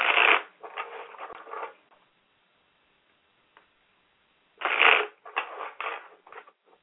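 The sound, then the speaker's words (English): Tarot cards being shuffled in two crisp bursts of riffling and flicking, each starting with a sharp burst and trailing off into lighter patters, separated by a quiet pause. “Okay, as I shuffle the cards, I want you to go ahead and ask the angels to come into the room and to reveal to you what it is you need to know at this time, okay?”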